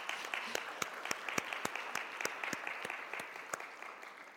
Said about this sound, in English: Applause.